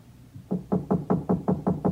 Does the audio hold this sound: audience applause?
no